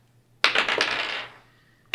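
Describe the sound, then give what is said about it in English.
Dice rolled for an insight check clatter onto a hard table, a quick burst of several sharp clicks tumbling and settling within about a second, fairly loud, followed by one more brief clack. “I'm also going to- Okay, both of you roll insight.”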